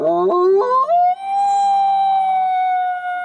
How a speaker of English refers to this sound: You push through overgrown vines and shrubs. You hear another howl.